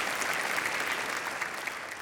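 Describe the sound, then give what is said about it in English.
A crowd claps steadily for about two seconds, a dense, even wash of many hands with no pauses or voices breaking through, applauding a preacher's statement that Jesus is the only way to heaven. “You can applaud that.”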